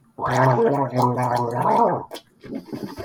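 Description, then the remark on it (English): A person gargles minty mouthwash for about two seconds, a loud, bubbling, wavering throaty rattle, followed by a short spit and softer sloshing sounds. “I'm gonna start me a line of mouthwash.”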